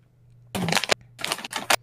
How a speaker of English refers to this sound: Stop rustling your bag of chips.